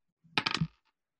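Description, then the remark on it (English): A ten-sided die, rolled for a rouse check, clatters across a table, a quick burst of three or four hard clicks that settle within half a second. Fairly quiet, with no talking. “Roll one, just roll a 1d10.”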